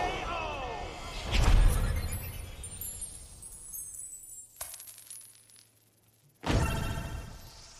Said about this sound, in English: Sweet. Coins.